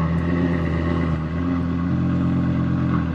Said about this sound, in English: Got the big tri-exhaust on the back. This is a V10, right? Yeah. Oh, it's got that little purr at the end, too.